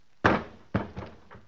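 The heavy body of a man who has been shot slumps to the floor with a loud thud, then a second hit and a couple of softer bumps as it settles. No one speaks.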